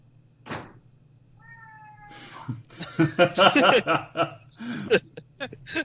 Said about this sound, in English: It's not a council episode without the cat. The cat has spoken.